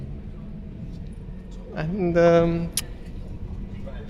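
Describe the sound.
Steady low engine rumble and road noise from inside a moving bus passing a toll booth, a constant drone filling the whole recording, with a voice briefly speaking over it midway.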